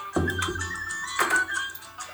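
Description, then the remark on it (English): Two heavy knocks of glass beer bottles and glasses being set down hard, each a low thud with a brief clinking ring, about a second apart, with no talking. “All the banging you hear is us slamming looks around like the beer bottles.”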